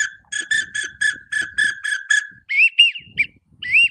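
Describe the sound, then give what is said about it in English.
A duck hunting whistle is blown in a quick string of about eight short, chirpy toots, followed by several higher, rising whistled notes with brief gaps between them. “You can make all kind of calls with this, and you cannot go wrong with a whistle, man.”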